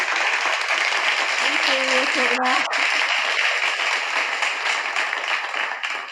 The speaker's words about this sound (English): Flash clap. Huh? No, that just didn't sound that good. They didn't sound enthused when they recorded that clap. I mean, when the audience here isn't very enthused.